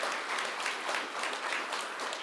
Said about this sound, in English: You can clap.